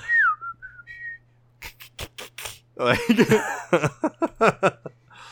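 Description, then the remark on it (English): A voice imitates a small creature, a Chadra-Fan, singing on stage with bravado: a high, gliding whistle, a few sharp clicks, then a rapid run of squeaky, chittering squeals, fairly loud over a faint steady hum. “You take the stage, and there's a lot of squealing and whistling and chittering.”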